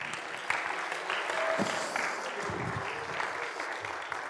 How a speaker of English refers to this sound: first service gave you a louder applause, didn't they?